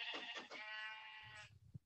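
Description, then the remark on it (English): A single drawn-out sheep bleat from a video game, loud with a wavering, shaky tone, followed by a few soft low thuds as it fades. “Hi, sheep. I'm going to kill you. Hey, sheep.”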